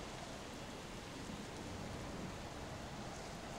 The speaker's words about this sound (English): The rain still kind of falls. Like I said, not as heavy as it was before, but definitely it's still there. It still lingers.